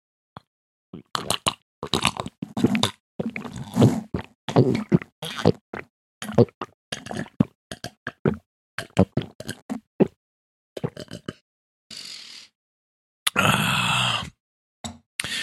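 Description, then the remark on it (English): Someone drinks Beyond Raw Lit pre-workout supplement stirred into a glass of water, in a long run of quick, uneven gulps and swallows, with wet plopping sounds and throaty grunts, ending in a loud breathy exhale after the last swallow. “I'm going to even let you listen to me drink it.”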